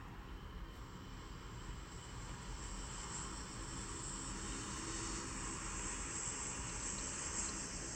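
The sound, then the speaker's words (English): A steady, droning propeller airplane engine in a video game rumbles continuously overhead, a broad low roar with a hissy upper edge that holds constant throughout, with no voices. “Where the plane at, though?”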